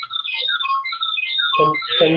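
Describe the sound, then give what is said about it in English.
An outgoing phone call placed through Siri to a show guest rings out as a quick run of bright electronic tones stepping up and down in pitch, then a voice begins talking over the ringing near the end. “I know he was having a little trouble with his internet connection, so we'll give him a little buzz.”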